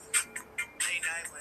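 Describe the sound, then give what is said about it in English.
A short electronic phone ringtone plays while someone goes through their ringtones: a quick run of bright, chirpy tones in uneven bursts, fairly quiet and heard on its own with no one talking. “I'm going through my ringtones. I got a lot of them.”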